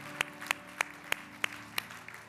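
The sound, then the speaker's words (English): An audience claps in unison, six sharp, evenly spaced claps at a steady rhythm of roughly three per second, over a faint low hum with no voices. “Yeah, let's just clap for what God's doing.”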